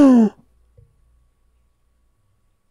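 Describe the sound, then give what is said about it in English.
A single sharp, voiced gasp right at the start, loud, its pitch dropping quickly before the rest fades into near silence. “Did you hear my gasp?”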